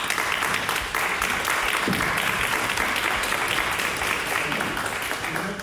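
Recorded audio from a board meeting: a crowd cheers and claps steadily for several seconds, a dense wash of applause with scattered voices whooping, loud and continuous throughout without a break.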